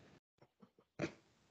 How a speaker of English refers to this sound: Do you think the dog was whining? He was whining.